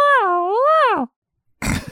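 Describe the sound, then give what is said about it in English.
A deer grunt call: one loud, drawn-out nasal tone that wavers in pitch for about a second, then a brief pause and a short burst of rough noise. “We are going to move into Deer Call.”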